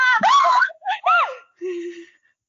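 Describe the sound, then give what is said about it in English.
High-pitched children's laughter rings out in a few quick bursts, then gives way to a short, breathy gasp before falling silent. “Sounds of children laughing, then gasping.”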